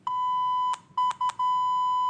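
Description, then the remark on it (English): A loud, steady censor bleep tone used as a contestant's answer buzzer in a quiz game sounds alone: one long bleep, two quick short bleeps after a brief gap, then another sustained bleep running to the end. “So, basically, you're trying to censor Scott.”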